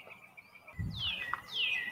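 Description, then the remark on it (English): Birds chirp in two clear, downward-sweeping whistled calls over a soft low rumble and faint background hiss, with no one talking. “You really don't get to hear much of the birds this time around, do you?”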